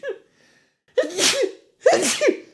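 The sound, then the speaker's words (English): Two loud sneezes from a man burst out one right after the other, each a sharp explosive blast, part of five sneezes in a row, with the faint tail of an earlier sneeze just before them and no talking. “He just sneezed 5 times.”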